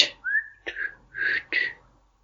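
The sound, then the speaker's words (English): A solo whistle shaped like the spoken English word "what": a rising tone, then three short bursts with breathy, consonant-like onsets, all within about two seconds. “That was like me whistling the word what.”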